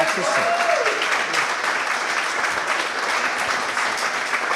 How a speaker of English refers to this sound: A big round of applause. Please welcome to the podcast Hull KR Chief Executive Officer, Mr. Paul Lakin, everybody.